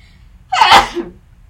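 A single sharp sneeze bursts out, loud and sudden, with a quick explosive onset that fades within half a second into near silence.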